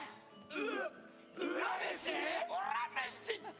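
A loud, drawn-out 'Urameshi' battle cry yell rises and falls over about three seconds, strained and shouting, with a second burst of yelling and a faint crowd-like backdrop.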